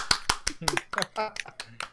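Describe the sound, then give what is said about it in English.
Sharp, loud claps ring out in an uneven burst, about eight in two seconds, while voices talk and cheer over them. “Can I get some clap?”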